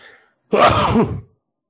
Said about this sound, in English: Boy, I got coughs, now I got sneezes.